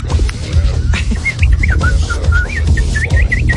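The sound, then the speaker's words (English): A person whistles a rapid series of short, warbling bird-like chirps, imitating a mockingbird call, repeated about a dozen times over a low rumbling background. “I can do a bird sound effect with my whistle.”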